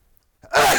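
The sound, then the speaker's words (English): A single forceful human sneeze, loud: a short sharp intake of breath after a moment of quiet, then an explosive, harsh burst of air that sustains to the end. “Man, that sneeze was aggressive.”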